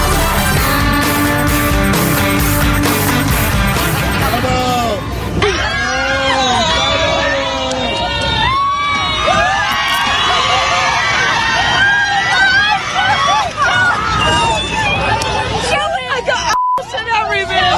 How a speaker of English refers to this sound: the whole plane sees them and starts cheering and laughing and pointing at them